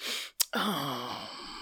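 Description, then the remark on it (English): A woman breathes deeply: a long breathy exhale, a brief pause and a small click, then another drawn-out breath with a faint voiced, sigh-like tone. “Now she's doing all this deep breathing.”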